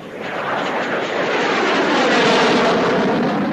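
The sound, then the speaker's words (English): A loud, continuous roar of a military jet aircraft engine passing overhead, of the kind flown by pilots in the Korean War, swelling slightly in the opening moments and then holding steady as a dense, rushing wash of sound with no voices. “And now they're called to fly jets that none of them knew how to fly.”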